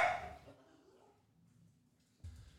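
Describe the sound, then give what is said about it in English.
Dogs barking in a house, set off by a person showing up: a sharp, loud bark bursts out at the start, followed by a stretch of near silence and a brief, muffled sound at the very end. “We're here in the house, the dog house, the dog and bird house, and whatever he's doing, driving the dogs crazy.”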